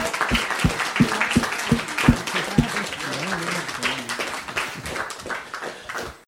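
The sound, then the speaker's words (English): An audience at a December 2019 Whitechapel Society meeting breaks into sustained applause thanking the evening's speakers, a dense crackle of many hands clapping at a steady loudness, with a few sharp individual claps early on and a voice briefly rising through the middle. “Big round of applause.”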